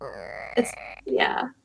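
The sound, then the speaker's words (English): A voice mimics a creaking door with a drawn-out, strained groan, a brief break, then a second wavering, rising creak that fades out. No words are spoken. “It's kind of creaky door though.”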